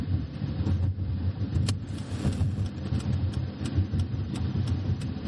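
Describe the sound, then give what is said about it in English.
A car drives steadily and turns into a lot, with a low, continuous engine and road rumble heard from inside, faint intermittent clicks and no one talking. “Just turn in there at the lot.”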